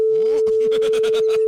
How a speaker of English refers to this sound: That was a long beep.